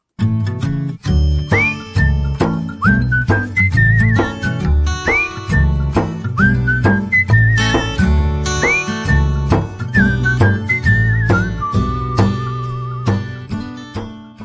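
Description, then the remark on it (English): Someone whistles a sliding, lilting tune over a full, busy musical accompaniment, the bright melody weaving on top throughout with no talking. “Thank you very much for listening to our little whistling guy.”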